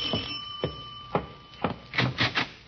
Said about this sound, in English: What's that? Doorbell sounds like...